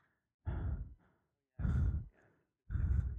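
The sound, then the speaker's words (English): A voice imitates the heavy, raspy breathing of a masked killer from a horror movie: three loud, drawn-out breaths in a slow, steady rhythm, with brief pauses between them. “Yeah, I guess his heavy breathing.”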